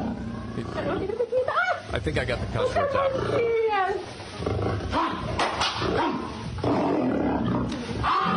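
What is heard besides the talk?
lion growling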